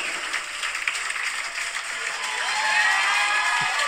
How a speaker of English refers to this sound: Some of this applause is kind of strange, man. It's kind of weird.